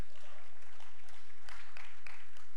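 An audience at a sermon claps together in a steady, dense patter of hands, with a few voices calling out faintly beneath the applause.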